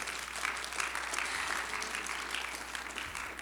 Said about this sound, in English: Somebody clap your hands to the Lord today.